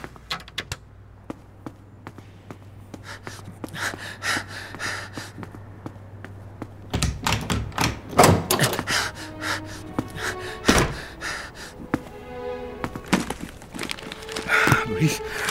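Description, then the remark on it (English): Someone struggles with a pull door that won't open: a flurry of thumps, rattles and wooden knocks, with breathy gasps and grunts over a low steady hum. “It's a pull door.”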